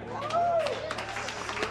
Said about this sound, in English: All right, so everyone's stoked. They're cheering.